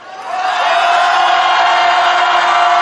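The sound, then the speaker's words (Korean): A large crowd at a rally for the bereaved families of the Itaewon disaster roars and cheers together, the shout swelling quickly in the first half second and then holding as a loud, steady, unbroken wall of voices. “우리 이태원 참사의 유가족들과 끝까지 함께하겠다는 마음으로 우리 유가족들을 위해서 힘찬 함성 부탁드리겠습니다.”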